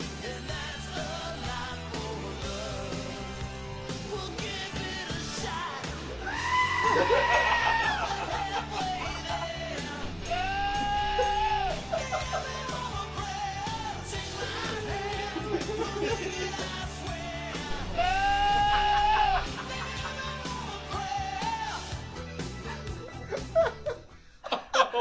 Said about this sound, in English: It just fits so well. That's so awesome. I can't even handle that. That second goat gets me every time. I'm not gonna be able to listen to that song ever again without hearing it.